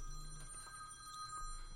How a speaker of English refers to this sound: Somebody else wants to help me. Let me try that right again. So, I apologize, phone call interruption.